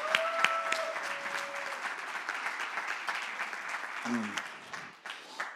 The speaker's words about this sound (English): We're honored that in retirement they choose to be here. Amen? Isn't that beautiful? Man, can you give them applause?